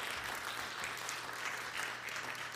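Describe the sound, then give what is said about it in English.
A crowd claps steadily in sustained applause for a missionary being introduced, a dense, even wash of hand claps at moderate loudness with no voices standing out. “so we can give her a big round of applause.”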